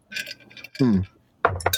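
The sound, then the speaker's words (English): Glasses clink together in a toast: a cluster of bright, ringing taps, then a short burst of voices, then another round of clinks overlapping more voices. “Raise your glasses, bitches.”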